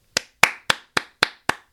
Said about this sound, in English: Applause. Cementing his place in power lore by celebrating his 300th game with the club.